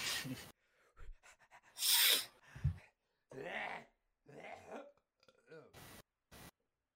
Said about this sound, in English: The beer is finally kicking in. Why would I get hiccups from beer?